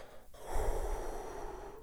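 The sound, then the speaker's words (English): A single long, deep breath taken to calm down, with an airy rush that swells and then slowly trails off. Nobody speaks. “And then they start breathing.”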